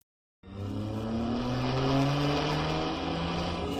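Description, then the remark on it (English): After a brief silence, a car engine roars up and holds a loud, steady high-speed drone, its pitch rising slightly as the car races hard in a chase. No voices are heard. “Look at that car up ahead about a block. Yes, it's a police car.”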